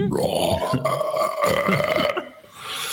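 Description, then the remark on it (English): A long, loud, drawn-out burp lasting about two seconds, rumbling and guttural, likely a person imitating a belch after taking in a lot of air, then trailing off into a quieter breathy tail; it voices the character Rudolph casting Thunder Wave. “What you see him do is he takes in a lot of air, going like, and he lets out this incredibly loud burp.”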